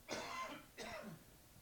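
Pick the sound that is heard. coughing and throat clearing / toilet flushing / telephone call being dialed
coughing and throat clearing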